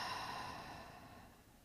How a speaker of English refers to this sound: Let's start by taking a long, slow inhalation through the nose. And have a long, slow exhalation.